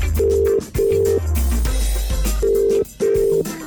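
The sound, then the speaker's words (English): Skype call tones while calling Buckingham Palace: four steady, loud beeps, paired in two quick sets with a pause between, over a low humming background and no talking. “Can we Skype Buckingham Palace?”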